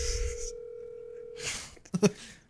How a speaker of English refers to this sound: Let me see if I'm getting a phone call. Yeah, I'm getting a call.